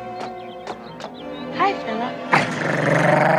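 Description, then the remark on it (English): A dog growls and snarls, starting with a few short sharp sounds and low rumbling, then breaking into a louder, harsh, sustained snarl for the last second. “Hi, doggy! Nice doggy!”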